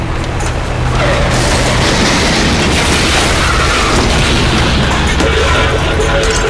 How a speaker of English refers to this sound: Hold on, I'm going through the wall of cars.